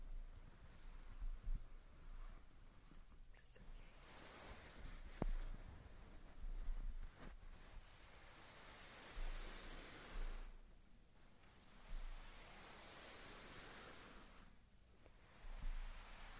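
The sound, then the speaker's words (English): Soft fabric of a blanket rustles and swishes in slow, repeated swells, a broad hushing sound that rises and fades several times with no one speaking. “Some blanket.”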